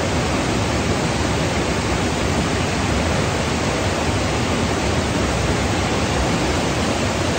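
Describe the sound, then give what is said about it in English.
A steady, unbroken rush of flowing river water, dense and hissing, holding an even loudness throughout with no voices or other sounds over it. “You're on the podcast, listen to the river.”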